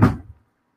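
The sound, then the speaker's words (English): A drawer that now holds only stickers shuts with one short wooden thunk and a brief rattle that fades within half a second, then silence. No one speaks. “I have a drawer for stickers and I love it.”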